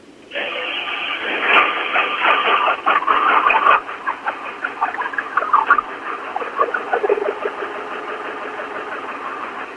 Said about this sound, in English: diagnose my Bronco that's suddenly running really badly